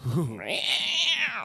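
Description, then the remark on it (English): A person imitates a cat fight between two alley cats with loud yowling meows: a quick warbling whine that rises into one long, shrill, sustained screech. “Look like a cat fight. Two wow. old alley cats.”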